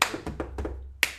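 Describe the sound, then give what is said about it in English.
A handful of hand claps, about five sharp smacks in an uneven rhythm, with the final clap the crispest and loudest. No one speaks. “Can I get some round of applause? Claps.”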